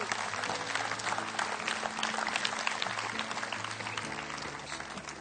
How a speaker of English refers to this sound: Give him a hand clap. Amen.